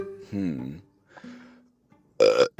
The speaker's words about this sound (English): I wasn't joking, I was just burping.